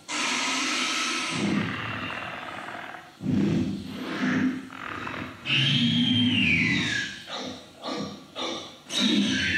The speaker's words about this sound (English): So to make the raptor scream, we're going to mix it with the high element you're going to hear coming up, which is the baby dolphin underwater.